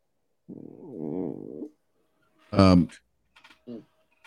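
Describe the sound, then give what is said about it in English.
A dog makes a low, wavering grumble that gives way to a sharp, high-pitched whine and a brief, softer whimper, fairly clear, with no one talking. “Your stomach or that dog?”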